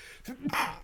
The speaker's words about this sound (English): I'm about to sneeze.